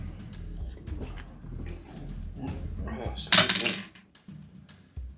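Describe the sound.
A long, low, rumbling burp drawn out over a few seconds, with a croaky, voiced quality, followed by a short breathy burst and quieter noises afterward.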